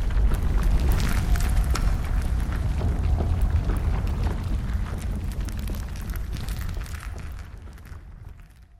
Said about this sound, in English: Whoa! The ceiling's coming down!